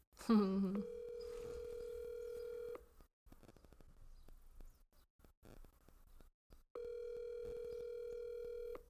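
An outgoing phone call rings out unanswered: a steady electronic ringback tone sounds for about two seconds, pauses through a long quiet gap, then rings again, clear, with a brief dialing blip at the start.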